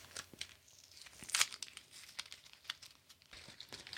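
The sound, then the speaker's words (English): Irregular crinkling of paper packaging as thin pieces of paper are handled and slid out of a wrapping, with dense crackles and one sharper rustling burst partway through; no voices. “There's a whole lot of very thin-looking pieces of paper. Oh, and they slide out of this wrapping, and look at that.”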